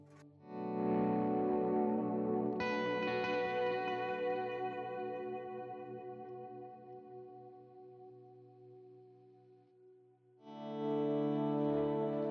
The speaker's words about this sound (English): I added some delays in front of the amp as well as the memory delay after. Longer washier stuff.